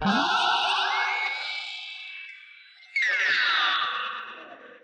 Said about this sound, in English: Let's go back and listen to just … guitar sound with that Benson Echo Rec.